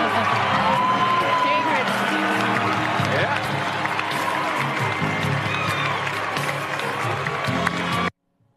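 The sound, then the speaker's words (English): A large audience at an awards ceremony cheers loudly for Will Smith as he wins the award, with sustained applause, whoops, hooting and shouting for about eight seconds before cutting off abruptly. “And look at them hooting and hollering and applauding.”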